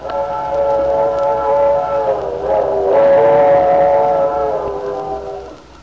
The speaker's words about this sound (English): When I was a girl, a train whistle used to make me imagine the most exciting things. Travel, distant places.